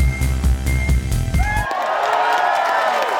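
A concert crowd at the State Theatre cheers for an encore: a brief burst of bass-heavy music stops abruptly, giving way to a loud, steady wash of shouting, whoops and high whistles.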